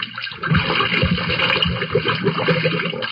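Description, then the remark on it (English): Water churns and splashes steadily as a vessel with a closed hatch and a man inside is shoved off into the water, a continuous sloshing rush with gurgling surges and no voices. “All right, push him out into the water.”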